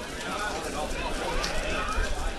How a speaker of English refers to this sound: The Weather Has Turned, and if you can hear that, it's the rain dripping from the umbrella above us.